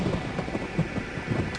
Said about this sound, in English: And let me turn off the storm